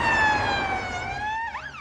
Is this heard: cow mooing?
no